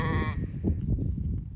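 A sheep on a farm in central Wisconsin lets out one short, wavering bleat at the start, then only a low, rumbling background noise remains for the rest of the moment.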